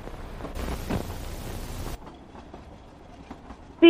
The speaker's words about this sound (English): That kind of sounds like a train.